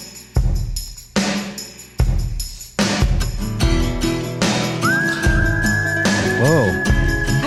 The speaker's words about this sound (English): Whistling out the gate. I'm so jealous of people who can whistle. I can't do it right either. He's got a good one.